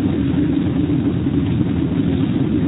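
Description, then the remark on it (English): A car arrives, its engine rumbling steadily, a low, even drone that stays fairly loud throughout without rising or fading, with no voices heard. “That must be her car.”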